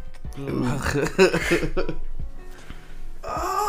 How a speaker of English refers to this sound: But yeah, guys, I almost died, and now I just have this cough.